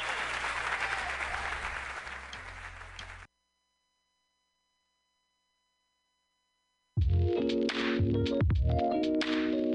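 crowd cheering

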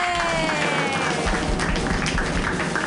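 audience clapping wildly

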